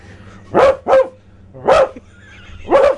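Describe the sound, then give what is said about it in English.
A dog, a cross of Kelpie, English sheepdog and a little white fluffy breed, barks four times: two quick barks close together, then a pause before a single bark and a final one. The barks are loud, with no talking. “I don't know what sort of dog that is, but it's a good dog.”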